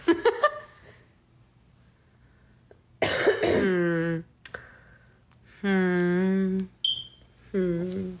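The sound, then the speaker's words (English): A single short, high-pitched electronic chirp of a smoke alarm low-battery warning, brief and distinct, sounding between drawn-out vocal groans and sounds, with a few clicks near the start. “That fucking fire alarm, dude.”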